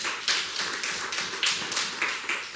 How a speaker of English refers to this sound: Yeah, you can give that a clap. Come on.